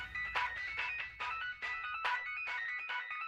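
A bright, bouncy chiptune melody plays in quick repeating electronic square-wave notes, steady and upbeat over a soft low thump, with no one talking.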